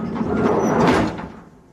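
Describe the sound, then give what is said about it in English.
The door of a big new car swings open with a broad, rumbling mechanical sweep lasting over a second, then fades out quickly, fairly loud with no one talking. “If I open the door here...”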